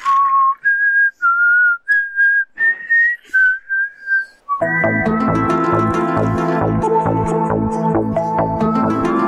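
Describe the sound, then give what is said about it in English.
Someone whistles a short, clear melody of separate rising and falling notes, fairly loud, then loud full-band music abruptly takes over for the rest. “My whistle looks pretty good.”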